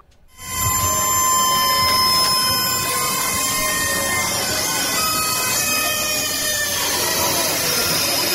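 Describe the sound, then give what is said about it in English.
Loud, continuous metallic creaking and squealing from large carnival ride machinery, with shrill sustained tones that shift slowly over a rumbling mechanical drone, starting abruptly and running without pause. “Okay, tell me if this is too creaky.”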